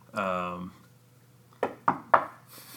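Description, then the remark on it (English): Three quick, sharp knocks on wood, evenly spaced, come right after a brief spoken voice, with a faint hiss at the very end. “Next time we win a playoff series, we're going to knock on wood.”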